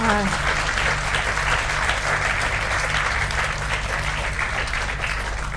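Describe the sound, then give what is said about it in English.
An audience at the Edinburgh International Book Festival's Outriders Argentina event applauds Kevin MacNeil and Mariana Enriquez steadily for the full few seconds, a dense, even patter of many hands clapping at once with no pause or build, loud throughout. “So please just give them one more round of applause.”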